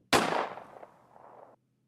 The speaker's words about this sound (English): And those are real gunshots. Hmm. I think.